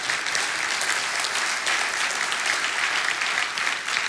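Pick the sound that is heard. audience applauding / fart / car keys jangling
audience applauding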